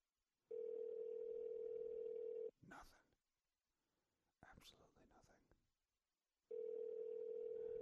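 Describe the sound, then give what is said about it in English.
Ringback tone of an outgoing phone call: two loud, steady, buzzing two-second rings separated by a pause of about four seconds, with faint rustling and whispery noises in the gap. “He ain't gonna answer either.”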